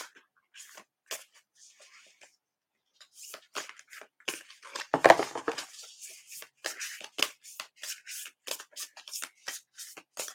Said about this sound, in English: Oof. These are really thick cards. They're hard to shuffle.